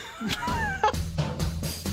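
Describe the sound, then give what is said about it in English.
Several short dog barks and whiny yips arrive in quick succession over a steady musical backing in a dog Christmas song, fairly loud, pitched into a tuneful pattern. “The first ever dog Christmas song has been released.”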